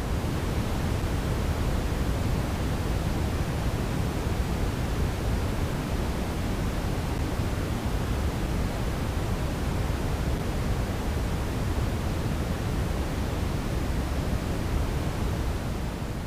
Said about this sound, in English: This is brown-red noise.